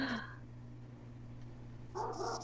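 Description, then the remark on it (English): A dog named Titus, a big watchdog, gives short excited yelps and whimpers in two brief bursts, at the start and end, as someone arrives home, with a low steady hum in between. “Oh, I think my boyfriend's home, so the dog's gonna go crazy.”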